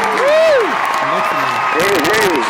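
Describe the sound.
Steady audience applause fills the whole moment, loud and close, with voices and a few rising whoops and calls riding over the clapping.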